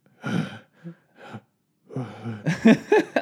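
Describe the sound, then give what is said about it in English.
A voice imitates the heavy breathing of TV contestants: a few loud, breathy inhales and exhales with short pauses between, ending in a quicker run of gasping, partly voiced breaths. “it's like the bottom or it's the top like five or four contestants and it's like they record them just breathing heavily like in this room”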